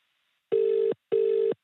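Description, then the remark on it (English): Two identical steady electronic tones, each about half a second long with a short pause between, the repeating ring-back pattern of an outgoing phone call placed by pressing the call button on a phone with its volume turned up, clear and fairly loud with no talking. “So I'm going to press the call button. I'm going to turn up the phone. We should hear something.”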